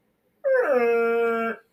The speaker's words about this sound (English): So there you go. That was my little dog Sadie.